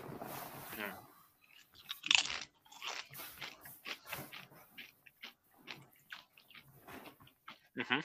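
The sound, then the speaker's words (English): Loud, sharp crunching of a tortilla chip with jalapeno agave salsa, taken as a standard scoop and bitten salsa side down on the tongue, followed by a run of irregular, crackly chewing bites that fade in and out, ending with another bright crunch. “I went salsa side down on the tongue.”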